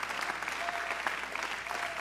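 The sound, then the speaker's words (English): A church audience claps their hands to the Lord in thanks, a dense, steady wash of applause, many overlapping claps blending into continuous noise at an even, moderate loudness with no voices standing out. “Would you clap your hands to the Lord and give him thanks?”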